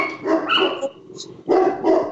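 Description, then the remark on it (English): A household dog barks in a few loud, harsh bursts, with a short pause before two more barks follow in quick succession. “Our dog.”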